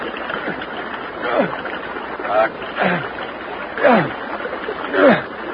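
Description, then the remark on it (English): Water splashes in irregular surges as swimmers kick in a stream, about five heavy churning bursts over a steady background wash of moving water, moderately loud. “Don't kick the water so hard.”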